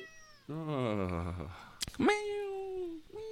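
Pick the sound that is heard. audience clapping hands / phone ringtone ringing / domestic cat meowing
domestic cat meowing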